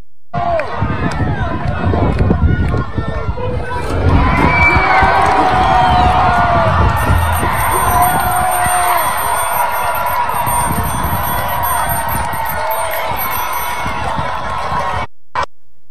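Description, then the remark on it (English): A large crowd in a video being played roars and cheers continuously, a dense wash of many voices shouting and yelling, with sharper whoops rising above the steady din for the full length. “Play that video again. I want you to look at the crowd and ask yourself, as you watch this video, ask yourself, how many of the people in that crowd are going to teach my children in school?”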